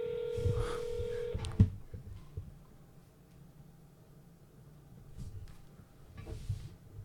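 A single steady electronic ringback tone drones for about a second and a half over a phone line while calling a McDonald's, ends with a sharp click, then quiet line hiss follows with faint rustling.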